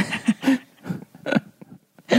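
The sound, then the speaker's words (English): A series of short, wet, sputtering bursts, about five in quick succession, close and fairly loud, sounding like a person blowing out fart noises with their mouth. “When you OMG. OMG fart like that.”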